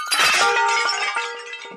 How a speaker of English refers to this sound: But then you get up close and it's like a ceramics graveyard. There's just piles and piles and piles of broken pottery. Like if a giant was so pissed and just smashed all your jars.